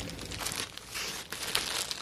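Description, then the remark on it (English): Continuous crinkling of a plastic bag, rustling in uneven bursts with brief pauses, as a package in a box is handled and opened with scissors. “Okay, now it's in a box that I threw a bag. Shh, I have scissors.”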